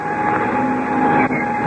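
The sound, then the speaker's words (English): A loud, steady mechanical roar of an airplane engine as the starter cranks and the engine turns over and runs, started from the front cockpit before taxiing out, with a constant low hum and a broad rushing noise that holds level throughout. “Well, I'll jump into the front cockpit and get the engine started.”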